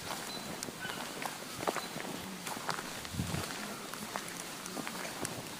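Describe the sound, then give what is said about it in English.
Footsteps of a person walking around with an iPhone at a koala preserve on Kangaroo Island, Australia, at an unhurried, uneven pace, each step a soft crunchy thud over a steady hiss of outdoor background noise. “And this is me just walking around with my iPhone.”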